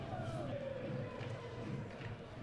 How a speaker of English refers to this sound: So, yeah, very noisy crowd down there. The other end of this side of the stadium that we're in, the Canois, making quite a racket tonight. Is that what they're called, are they? The Canois.